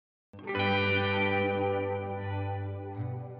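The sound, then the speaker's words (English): Lush, delayed guitar tones swell in after a brief silence and sustain as a dense, shimmering wash with echoing repeats, steady and fairly loud, with a slight fluttering pulse near the end. “I filled this out with some lush-sounding delayed guitars to give it sort of a contemplative feeling.”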